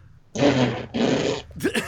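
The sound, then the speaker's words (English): Two loud, buzzy blown raspberries in quick succession, each about half a second long, made by a woman with her lips, followed by a brief vocal noise. “Okay, based on her fart mouth, that's not the answer.”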